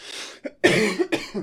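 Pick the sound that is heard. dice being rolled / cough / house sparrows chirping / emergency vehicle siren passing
cough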